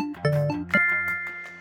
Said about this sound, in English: That chime is your indicator that 10 seconds is up and it's time to lock in your answer.